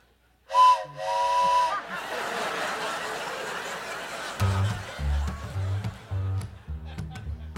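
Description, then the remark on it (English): A steam train's whistle blows in two loud, harmonic blasts, followed by a steady hiss of steam and the rhythmic chugging of the engine, with deep repeated pulses building toward the end. “Clickety-clack, clickety-clack. Big old engine going down the track.”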